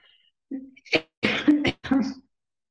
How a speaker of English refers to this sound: Why do I need to suddenly cough?